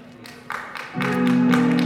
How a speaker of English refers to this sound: Please, let it sink in. Please, don't just clap for this. Let it sink in.